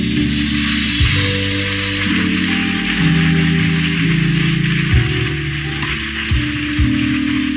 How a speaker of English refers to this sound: Somebody shout amen. Yes, clap to the Lord.